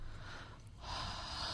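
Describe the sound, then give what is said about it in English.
A breathy inhalation drawn in through the mouth while tasting bourbon, a brief airy rush, a short pause, then a longer, stronger intake of air, with no talking. “What are you breathing in the mouth for?”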